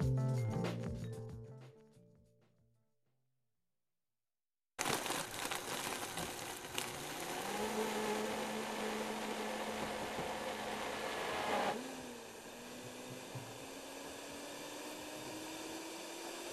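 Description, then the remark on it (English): Music fades into a moment of silence, then a blender roars to life, whirring loudly and steadily as flavored powder and Herbalife protein are mixed into a s'more-flavored nutrition shake at Odyssey Nutrition, a smoothie and juice bar in Athens; partway through, the motor's pitch drops and slowly climbs again. “Gabby Morgan is pouring scoops of flavored powder into a blender mixed with Herbalife protein, among other toppings.”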